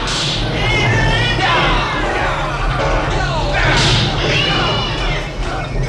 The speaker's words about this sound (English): Listen to this crowd roar for the finish here in O'Leary's Saloon.